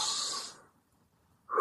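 A forceful, airy breath fades out over about half a second; after a pause, another sharp breath begins. It is someone demonstrating a deep breathing exercise, with no talking.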